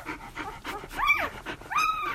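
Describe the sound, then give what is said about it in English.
Eleven six-day-old puppies squeak and whimper in thin, rising cries while feeding from their mother Lola, a golden retriever, over her steady, breathy panting, with no talking. “They're just 6 days old, and they're rushing, as much as puppies of that age can rush, to feed from their mum, Lola, a tired but proud golden retriever.”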